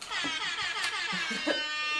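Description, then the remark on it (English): A loud, sustained air horn blares without pause for about two seconds, its harsh, buzzy tone wavering slightly in pitch. No one speaks. “Klaxon. Or air horn.”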